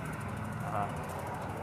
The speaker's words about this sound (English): as we reach the main road. More cars, but probably about the same as last time I walked up this hill.